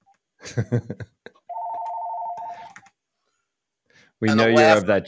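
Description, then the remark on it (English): A single electronic telephone ring, a steady warbling tone lasting just over a second, sounds clearly between bursts of talking. “And of course, let me turn the ringer off.”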